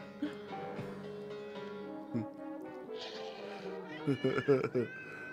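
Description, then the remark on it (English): A cat meows in long, drawn-out, wavering cries, ending in a quick burst of shorter, choppier calls. “It's just a cat.”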